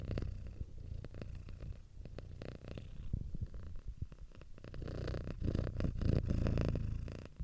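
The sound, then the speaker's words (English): A cat purrs steadily, a continuous low rumbling that swells slightly louder toward the end, with soft crackly textures over it and no talking. “Kitty ASMR.”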